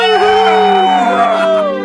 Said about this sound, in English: The good doctor's wife, the slaves, the field hands, the stable boys, all stood in silence as the good doctor screamed in agony. And all at once, the entire plantation let out a collective cry.